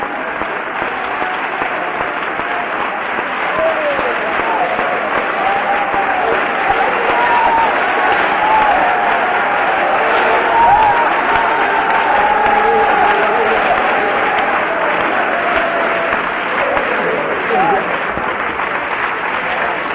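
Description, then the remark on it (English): The men of an audience give the women a sustained standing ovation, steady loud clapping filling the whole stretch with scattered voices and a few cheers mixed into the applause. “I think you men ought to stand and clap your hands for the contribution that our women make to the kingdom of God.”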